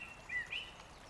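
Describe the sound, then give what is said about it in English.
A couple of soft, high chirps from birds singing in a forest rise briefly over a faint, steady background hush, quiet, with no voices. “You can hear birds quietly singing.”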